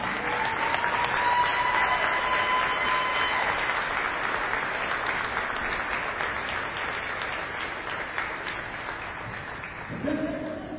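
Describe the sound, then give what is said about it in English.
Sustained audience applause for the Mount St. Joseph class of 2021 at a women's basketball senior night celebration, a dense, steady wash of clapping that stays loud throughout and tapers slightly near the end, with faint cheering mixed in and a voice briefly emerging at the close. “Another big round of applause for the Mount St. Joseph class of 2021.”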